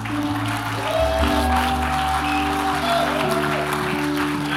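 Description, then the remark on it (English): A large audience applauds steadily for several seconds, a dense wash of clapping that stays at an even volume, with sustained keyboard or organ chords playing underneath. “Why don't we give those people a round of applause?”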